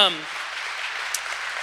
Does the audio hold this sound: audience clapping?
yes